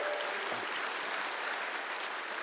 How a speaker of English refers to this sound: Happy Mom's Day, right? Happy Mother's Day. Come on, give a round of applause to the moms in the house.